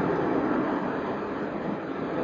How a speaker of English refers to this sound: Peacefully coexisting with the sounds of the jet, voice, traffic.